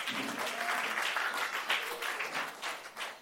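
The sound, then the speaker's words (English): A church audience breaks into sustained applause, dense overlapping clapping that holds steady for a few seconds before tapering slightly, with faint voices mixed in. “A round of applause for the wave.”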